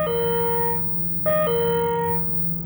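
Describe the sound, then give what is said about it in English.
An electronic division bell for the Seanad sounds in two sustained, steady tones separated by a brief gap, with a faint low hum running underneath throughout and no voices present. “The sound for the Seanad is this.”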